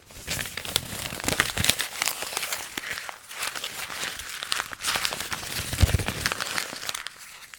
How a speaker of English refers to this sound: And maybe for the sheer sake of it, I'll crinkle up a piece of paper again.